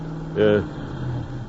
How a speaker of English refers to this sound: Somebody just drove out in front. Oh, who is it, my dear? I can't tell, but it's a big car.